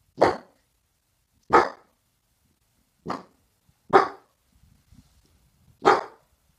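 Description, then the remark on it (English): A dog, Pebbles, barks five times at someone at the door in loud, sharp bursts spaced unevenly about a second or more apart, with a faint low rumble between the last two barks and no voices. “Oops. Someone's at the door.”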